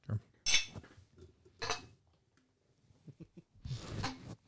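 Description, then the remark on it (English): Glasses clink together in a toast as people reach around a table, a bright ringing knock followed by a few more scattered, clattering taps, with low murmuring voices in between. “As we all reach around the table to try to cheer.”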